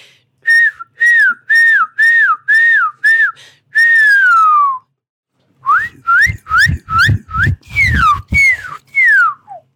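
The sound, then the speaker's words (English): A person whistles an imitation of a shining cuckoo: a run of repeated upslurred whistled notes, a longer falling note, then another series of rising notes ending in descending slurs, loud and clear. “Here's my best guess at a shining cuckoo.”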